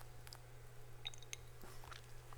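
A quiet sip from a drink: small wet mouth clicks and a soft swallow over a steady low electrical hum, with no talking.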